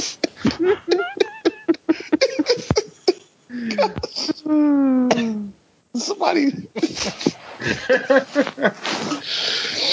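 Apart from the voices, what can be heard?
fart machine noise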